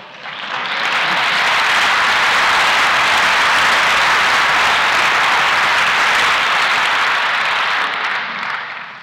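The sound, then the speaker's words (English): Sustained audience applause fills the whole stretch, a dense, steady wash of many hands clapping at full volume, swelling in quickly and tapering slightly at the end, with no voices over it. “You know, that applause indicates that you're ready for this concept.”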